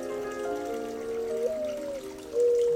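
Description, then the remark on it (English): A small brook trickles and babbles steadily at night, with a soft continuous wash of flowing water and shifting gurgling tones, no voices present. “What a perfect night of a babbling brook and warming temperatures.”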